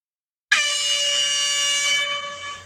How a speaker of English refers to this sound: Are we good? Everybody is good on their buzzer?